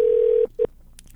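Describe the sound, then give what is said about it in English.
A telephone line tone holds steadily for about half a second, then a short second beep follows after a brief pause as a scheduled phone call is placed and rings. No voices. “I scheduled this, sort of, like I always do when my phone calls.”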